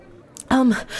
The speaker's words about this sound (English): you would soon hear the sound of footsteps running toward you, panting.